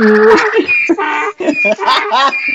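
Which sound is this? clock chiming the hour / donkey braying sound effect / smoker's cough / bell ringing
donkey braying sound effect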